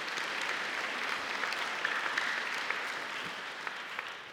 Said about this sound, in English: Let's give a hand clap of praise for that.